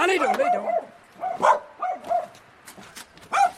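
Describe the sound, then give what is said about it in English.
A dog gives a few short yips and barks mixed with whiny whimpers, in bursts across a few seconds, with people talking around it. “Yes, hello, dog.”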